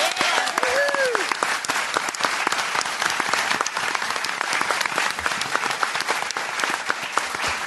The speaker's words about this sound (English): So they really deserve a round of applause.